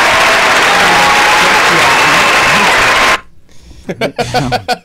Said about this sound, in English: Can we get a round of applause, please? Yeah. We'll wait for the round of applause.